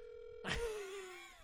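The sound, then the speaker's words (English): A telephone rings over a speakerphone as a call is placed to a friend: a steady electronic tone gives way to a brighter, buzzy ring with a slightly wavering pitch, fairly quiet and with no one talking. “Who are you gonna call? Our first telephone guest.”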